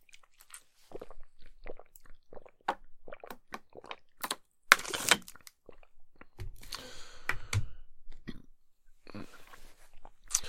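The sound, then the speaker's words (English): Mouth sounds: a sip of water with wet clicks, a brief slurp and a swallow, then a soft exhale. Quiet and intimate, with no talking. “A sip of water.”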